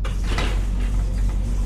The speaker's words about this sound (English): We must open the hangar door by pressing Control O.